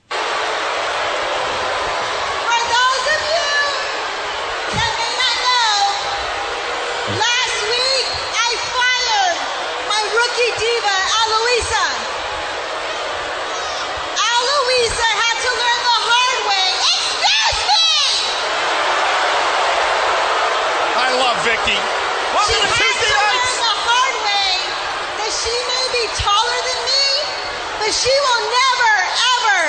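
A wrestling arena crowd roars without pause as Vicky Guerrero comes out to introduce her last rookie, a dense wash of cheering, whoops and overlapping shouts that swells and dips but stays loud throughout; some of the crowd noise is sweetened.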